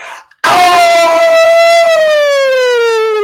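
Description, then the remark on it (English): A person lets out a loud, sustained howl, testing how loud they can go and whether the neighbors can hear, that begins abruptly and holds a steady, slowly falling pitch for about three seconds, sounding much like a wailing siren. “So just give it a howl.”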